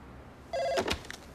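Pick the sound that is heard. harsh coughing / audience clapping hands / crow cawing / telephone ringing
telephone ringing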